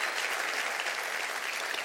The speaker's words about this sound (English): And here they are. Let's give them a great hand on this Valentine's Day.